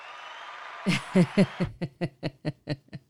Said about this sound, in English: I like that hand clap there. Do that again, engineer. Listen, we've got sound effects and everything here at the Koronicles podcast, and thank goodness for our engineer who gave us a little bit of a hand clap